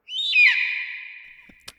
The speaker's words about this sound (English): Somewhere in the distance, an eagle cries.